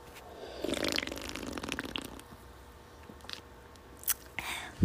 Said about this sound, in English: Taking a sip of my soda, so just ASMR real quick.